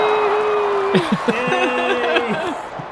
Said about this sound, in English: Hey, who do I got in the stands with me today? Let's hear a big cheer.